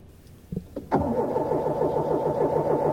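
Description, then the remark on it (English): A minivan engine in the North Brick Valley Mall parking lot cranks with a steady, rhythmic mechanical chugging after a couple of quick clicks, grinding on loudly without catching and running. “The minivan still will not start.”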